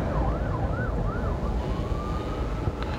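An ambulance siren wails in rising and falling sweeps over a steady rumble of traffic as the ambulance stops traffic, then settles into a long, steadier tone, partly buried under the road noise.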